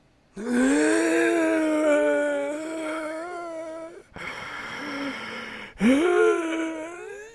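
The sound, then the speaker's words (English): Ghoulish, heavy breathing of the zombie Zombie Martin, with a rasping, voiced groan: a long drawn-out exhale, a quieter breath, then another loud groaning breath. No one speaks. “We hear Zombie Martin's ghoulish breathing.”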